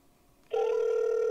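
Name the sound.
telephone ringing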